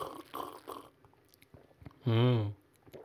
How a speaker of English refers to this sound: You getting your sip on? Mm-hmm. I like those gulping sounds. The sounds of your internal... warming up.